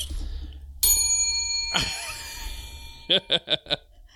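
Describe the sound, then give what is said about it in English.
A bright bell dings once, loud, its metallic tone ringing on and slowly fading; a few short, quick tinkling pulses follow near the end. “You know, I'm just, you know, I only get one bell for the five that I'm going to put up.”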